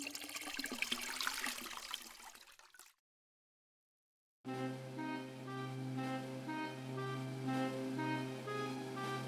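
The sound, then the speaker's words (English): Water pours and splashes loudly for a few seconds, then stops abruptly, as Gretel fetches water in a telling of Hansel and Gretel. After a short silence, a steady harmonic musical tone plays on without any voices. “With a sad heart, Gretel fetched the water in which Hansel was to be boiled.”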